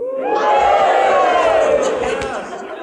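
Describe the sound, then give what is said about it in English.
An audience at a church service cheers and whoops together at the announced sermon title, a loud, sustained roar of many voices that holds steady for over two seconds before easing off slightly at the end. “Everybody's going to cheer after I say this, all right?”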